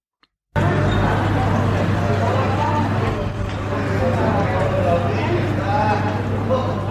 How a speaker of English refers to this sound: First, hear urban sounds from a balcony outside the town square in Villafranca del Bierzo.